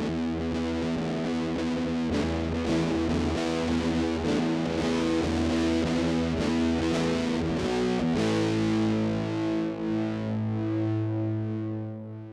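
A loud, gritty alternative rock passage of heavily distorted guitars, dense and noisy with swirling effects, holding steady before shifting to a lower sustained chord near the end; no singing.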